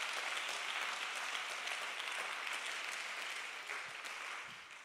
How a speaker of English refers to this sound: Somebody clap your hands and praise him.